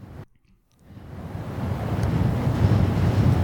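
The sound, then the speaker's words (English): Howling wind sweeps across windswept Scottish moors after a brief pause of near silence, building steadily into a loud, continuous rush with buffeting gusts. “Or, of course, you have to have the windswept Scottish moors.”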